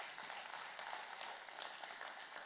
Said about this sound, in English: Amen. You can clap for that.